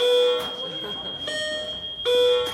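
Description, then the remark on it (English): A loud electronic alarm rings in repeated shrill bursts with short gaps between them, a steady piercing tone filling the space while faint voices murmur underneath. “You know, we have alarm.”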